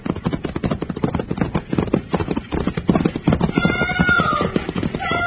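Loud, rapid galloping hoofbeats from a runaway team of horses pulling the driverless Setonville stagecoach, a dense rhythmic clatter running without pause, with a thin high squeal rising over it near the end.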